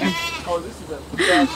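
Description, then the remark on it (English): A goat being hand-led down a grassy slope onto an overgrown, weedy area of a yard to graze bleats a few quavering, nasal cries in quick succession, with the last one loudest and most drawn out. “I was given the honor of guiding one of the goats to the weed buffet.”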